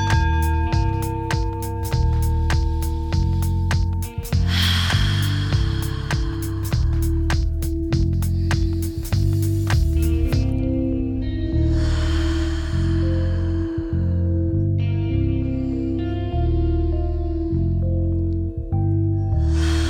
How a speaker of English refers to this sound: Before we get started, let's go for 5 deep breaths. Inhale through the nose, exhale through the mouth for 5 deep intentional breaths to reset the energy. Breathe in.